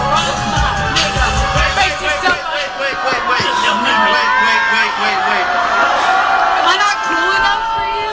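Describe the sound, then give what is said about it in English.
A crowd reacts loudly, with overlapping whoops, shouts and cheering voices forming a dense, sustained roar that holds steady for several seconds. “That was like, oh, you get a crowd reaction.”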